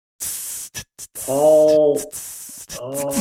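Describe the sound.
A voice imitates snake jazz: sharp breathy hisses in a rhythmic pattern, broken by two longer sung tones, fairly loud with no ordinary speech.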